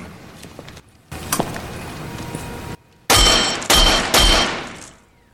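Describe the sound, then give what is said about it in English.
A pane of unbreakable glass is shattered by an ultra-high-frequency sonic agitator ring twisted on a finger: loud glass shattering bursts out in several sharp crashes, each ringing bright and brittle before fading, after a quieter stretch of rustling, crackling noise. “One pane, unbreakable glass, one standard issue ring finger. Twist so, voila. Ultra high frequency single digit sonic agitator unit.”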